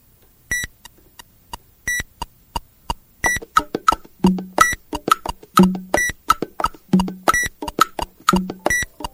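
A mobile phone's electronic ringtone goes off during a studio recording, a rapid series of bright, clear beeps that quicken into a busy melodic pattern with a low buzzing pulse underneath, loud.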